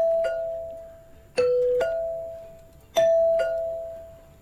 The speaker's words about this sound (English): could you press your doorbell one more time for us, please?